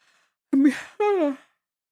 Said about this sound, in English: I always yawn on this because I'm talking too much and I try to fight it because it's not you, it's me. It's because I'm talking too much.